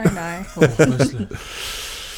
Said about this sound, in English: I'm yawning.